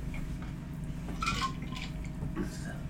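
Crown whisky being poured over ice with water, with a short splashing trickle and a few light clinks of cubes, fairly quiet over a steady low background hum.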